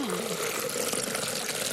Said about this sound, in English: So, you know, I just put them in a food processor and then put them through a sieve. Yeah. So, two cucumbers, then I'm going to pour that into the blender.